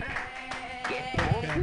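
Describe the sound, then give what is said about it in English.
An audience claps steadily for Ray Khan at the end of his stand-up set, a dense, continuous patter of many hands, with scattered cheers and voices mixed into the applause throughout the short stretch. “Keep your hands clapping for Ray Khan.”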